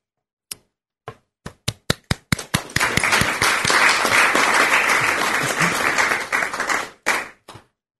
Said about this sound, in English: He was looking at me, so I thought we needed to clap for him.